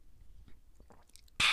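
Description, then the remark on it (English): Quiet wet mouth sounds and soft swallowing as someone gulps water, followed by a sudden loud clunk or rustle at the very end. “I needed a gulp of water for this one.”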